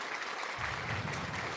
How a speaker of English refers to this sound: So, you know, we do wish you well, Father Brian, and hopefully you're on the mend soon. And I'm going to give a clap for him. Clap for Father Brian.